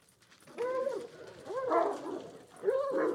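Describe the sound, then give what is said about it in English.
Dogs bark three times in a row, each bark drawn out and slightly whiny, moderately loud, with short gaps between them and no talking. “That dog did not go after the Doberman, right? Not he ran up to him with a lot of energy.”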